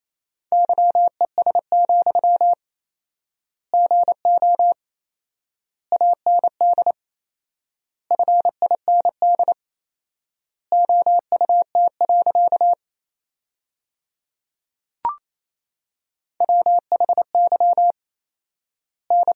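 Morse code at 28 words per minute with fourfold word spacing, sending sentences built from the top 500 words: a steady mid-pitched tone keyed in quick dots and dashes, with clusters of characters separated by long silent word gaps and one brief click partway through.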